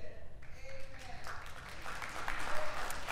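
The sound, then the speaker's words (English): An audience bursts into applause, a dense wash of many hands clapping that swells after the first second and stays steady and fairly loud, with faint voices mixed in. “You don't have to clap, but and I know that's hard.”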